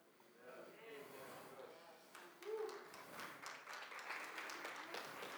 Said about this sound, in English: That's a nice little golf clap. Good shot.